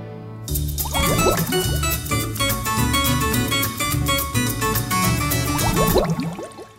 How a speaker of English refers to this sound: Excuse me. I need a drink. Let's go over to the water cooler.